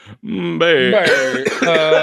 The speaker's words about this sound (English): I really just started coughing there. My voice hurts so much.